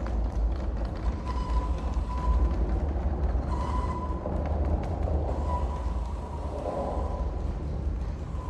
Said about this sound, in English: Ambisonic Steam Trains by Detunized is a series of recordings of railways in Germany